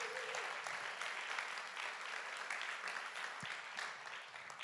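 A crowd applauds steadily, a dense wash of clapping from many hands that holds at an even level for several seconds before easing slightly at the end.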